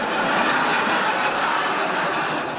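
A steady, loud roar of a train running along rails, with a continuous rumbling rush and faint rhythmic clatter throughout, no voices present.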